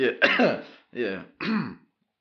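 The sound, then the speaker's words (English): A person clears their throat and coughs in three rough bursts, the first longest and harshest, the next two shorter, all fairly loud, with silence after. “Seems like that cough hasn't really left.”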